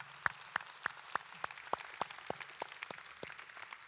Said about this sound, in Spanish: Lo otro es que queremos también darle gracias a Dios a 2 de nuestros equipos misioneros que regresaron en esta semana. Uno de ellos fue, eso es un aplauso definitivamente.